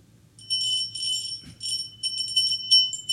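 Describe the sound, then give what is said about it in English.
A high, metallic bell rings steadily for about three seconds, its tone shimmering in rapid pulses over a faint low hum, with no one talking. “It's you hear that bell.”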